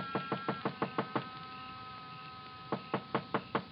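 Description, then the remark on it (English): Two rapid bursts of knocking on the door of Joe Picatello's small, dark frame building, his office and living quarters on a side street near the park: about seven or eight firm raps, a short pause, then six more. The knocks are clear with no voices. “But in the hope he might be asleep in his little apartment up above, I knocked.”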